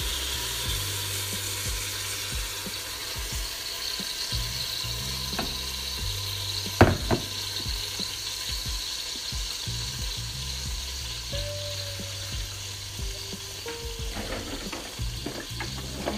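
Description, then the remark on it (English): Steady sizzling of ingredients and liquids poured into a hot pan and left to cook, with occasional clinks and scrapes of a utensil and a low rumble underneath; no one speaks. “I said all that about the liquids, and I ended up just pouring everything in because it all sounded so good. And I'm just going to let this sit in here and cook, give it a toss from time to time.”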